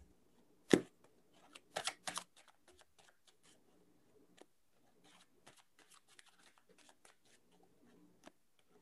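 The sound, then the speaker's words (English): Shuffling of a deck of tarot cards: a sharp snap and a couple of brisk riffling bursts early on, then soft, scattered card clicks and rustles. No voices. “I'm starting to shuffle.”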